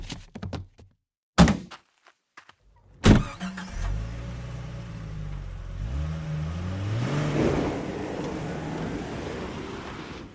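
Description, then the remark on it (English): Two heavy thuds ring out as a car trunk is slammed shut after a body is heaved inside, then an engine starts and revs, its steady rumble rising as the car drives off. “So, he heaved the body into the trunk of his car and drove off.”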